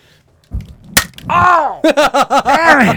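A single sharp slap on the cheek of a person accepting an award at an awards ceremony, instantly followed by a loud wailing cry from a voice and a string of rapid, pitched vocal yelps.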